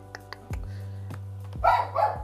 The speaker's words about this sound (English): Sorry, the dog is barking again. He's going crazy. I'm dog sitting.